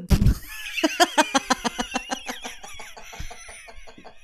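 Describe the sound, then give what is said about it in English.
A voice imitates a drum roll with a quick, steady string of buzzy vocal pulses, fairly loud, gradually softening over about four seconds after a short low thump. “So I was actually just going to put a sound bite of a drum roll in here. But I appreciate your efforts.”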